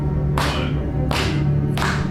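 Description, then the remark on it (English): Three sharp hand claps, made to sync the audio with a video, spaced about a second apart, each with a short ringing tail, over a steady low background hum. No one speaks. “On our trip, I'm going to clap so that I can sync with my video.”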